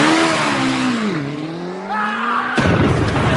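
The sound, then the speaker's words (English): A stunt car's engine revs hard at the Museum of Everything as it drives to jump over 10 double-decker buses, its pitch dipping and then climbing as it accelerates, before a sudden harsh burst of noise like tires skidding. Loud, with no voices. “he's now going to drive over 10 double-decker buses.”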